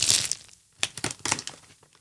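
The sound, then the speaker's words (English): A piece of paper being crumpled up, a dense burst of crackling followed by a brief pause and then a series of sharper, irregular crinkles and pops. No voices. “It sounds like you crumpling up a piece of paper.”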